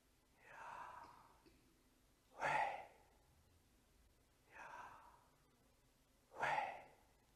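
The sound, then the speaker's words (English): Slow, deliberate breathing, two full cycles of a soft drawn-in breath followed by a stronger, breathier exhale, evenly paced, with no talking. “There is an ancient Jewish understanding that the name Yahweh is the sound of breathing.”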